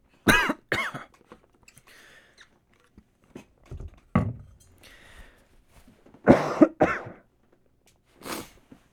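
coughing and throat clearing

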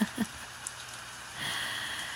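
rain falling

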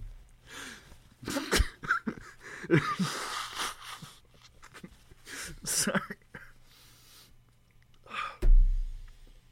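blowing nose

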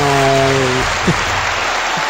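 applause sound effect

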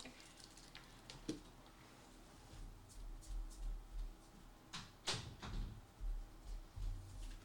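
door being closed

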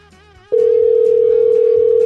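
telephone dial tone

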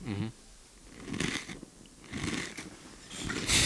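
crunching on goldfish crackers

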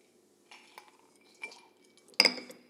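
glasses clinking

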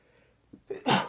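sneeze

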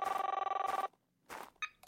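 telephone bell ringing

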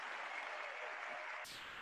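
applause

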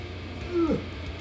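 cat meowing

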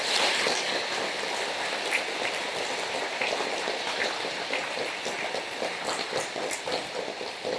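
audience applause

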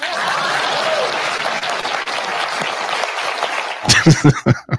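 audience clapping

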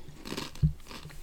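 chewing and crunching food

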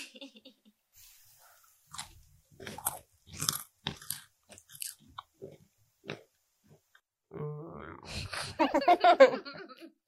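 crunching and chewing food

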